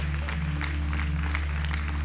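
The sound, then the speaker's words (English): An audience in a church claps steadily over a sustained low droning chord, the hand claps forming a dense patter of sharp bursts at a moderate, even volume with no talking. “Keep clapping, church.”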